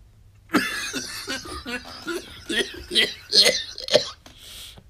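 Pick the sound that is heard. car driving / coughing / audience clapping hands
coughing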